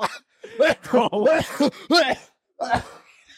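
Several loud coughs right into the microphone, coming in quick throaty bursts with a strained, almost sung, voiced quality, then a pause and one last cough.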